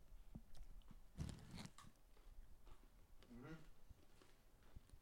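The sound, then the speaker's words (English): Someone crunches and chews a crisp, chocolate-covered pretzel close to the microphone, a loud bite followed by softer irregular chewing, with a brief vocal murmur partway through. “We'll try not to chew near the microphones.”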